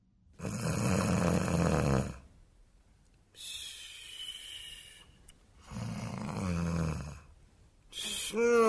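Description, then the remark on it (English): Loud, exaggerated snoring voiced by a performer for a lone finger puppet: three long, rasping snores separated by quiet pauses, with a fourth starting as the sound ends. No one speaks. “The first episode of Top Goon opens on a lone, snoring finger puppet.”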